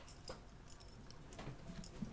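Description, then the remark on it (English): A female dog shifts and gets up, her collar tags giving a few faint, scattered metallic jingles amid quiet, with no talking. “My dog just got up because she was so shook by that comment.”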